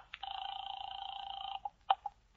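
A telephone rings once in a steady, trilling burst lasting over a second as a call is placed to a home in Louisburg Square, followed by a few sharp clicks like a receiver being picked up. No voices are heard.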